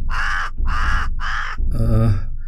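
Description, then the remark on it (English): A raven caws three times in quick succession, loud, with harsh rasping calls, followed by a deeper, more guttural croak. “He was fearless and screamed back at them.”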